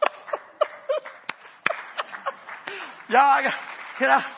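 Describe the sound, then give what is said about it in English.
Scattered, uneven handclaps from a church audience during a sermon, starting sparse and sharp, then voices rise with brief laughter and chatter over the last second or so. “Y'all don't clap yet.”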